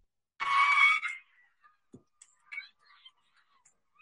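A woman lets out one loud, shrill screech lasting under a second, followed by quiet, scattered faint clicks and small noises in the background.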